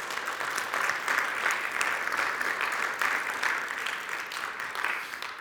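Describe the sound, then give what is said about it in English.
An audience claps for God in a steady round of applause, a dense wash of many hands that stays fairly loud throughout and tapers slightly near the end, with no one speaking. “Come on, can we just give God a great round of applause?”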